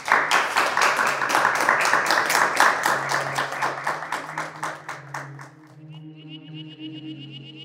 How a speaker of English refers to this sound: Can we give a little round of applause to Professor Mark Howden?